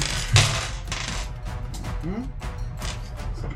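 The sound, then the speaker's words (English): Dice clatter across a tabletop: one sharp knock, then a loose scatter of lighter clicks and taps as they tumble and settle, with faint murmuring voices in the background. “I mean, three dice are the same thing.”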